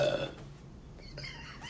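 A single short burp erupts at the start, then trails into faint, low rumbling with no talking.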